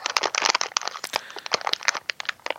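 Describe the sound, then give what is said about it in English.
Crinkling of a plastic candy wrapper being pulled and twisted by someone struggling to open it, a dense run of sharp crackles and rustles lasting a few seconds with no talking. “Mine's not opening.”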